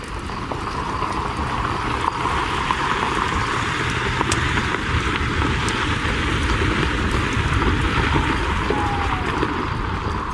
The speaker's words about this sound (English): Just then, the kids heard a sound of a jeep driving up a dirt road.